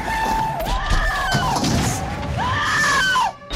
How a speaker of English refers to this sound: There's a female Wilhelm scream when the Bronco first flips. It's like very obviously not Linda Hamilton and very obviously like a canned sound effect.